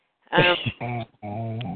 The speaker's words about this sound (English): There it is again. Yeah, somebody's snoring. That's snoring.